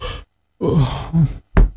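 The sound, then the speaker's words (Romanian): A low groaning voice drawn out over a second, then two heavy, loud knocks in quick succession as a father bangs hard on a door to wake the house. “Se aude vocea tatei care bate cu putere în ușă.”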